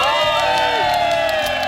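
A large crowd outside the Today show on Memorial Day Monday morning cheers and whoops loudly and continuously, with overlapping shouts and high-pitched cries blending into a dense, steady roar.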